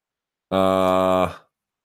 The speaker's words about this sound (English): You can hear my cat.